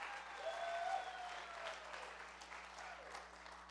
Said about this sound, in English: Go ahead and clap your hands one more time unto the Lord.